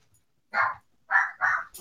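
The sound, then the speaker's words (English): Dogs barking: three sharp, loud barks, one alone and then two in quick succession, with short silences between and no talking. “Yeah, goddamn dogs.”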